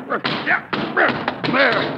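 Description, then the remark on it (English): Three hard, heavy whacks of an umbrella beating against the floor at a snake under a chair, at uneven intervals, with agitated voices and commotion running underneath the blows. “You have just killed Mr. Chalmers' umbrella.”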